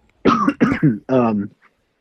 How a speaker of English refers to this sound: God, it's never good to be coughing in this day and age. It's just a dry throat, guys. Don't worry. I'm good.